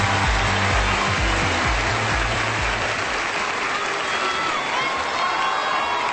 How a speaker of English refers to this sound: You can kind of hear the boos coming in as the, like, it sounds different because a boo was such a low decibel tone and then the girl screaming is so high. But clearly there's a lot of boos coming in for this.